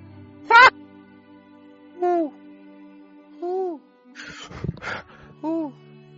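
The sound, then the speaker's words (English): Five owl hoots spaced about a second apart, each a short wavering call, fairly loud and close, with a brief burst of rustling noise near the end. “I hear the owls! They're nearby!”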